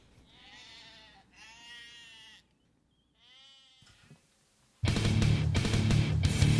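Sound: goats bleating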